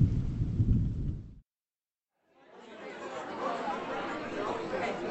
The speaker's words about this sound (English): Thunder behind us and thunder ahead.